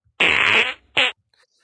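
A loud fart sound effect, played from a soundboard button, comes in two bursts: a long raspy blast followed by a short sputtering one, with no talking.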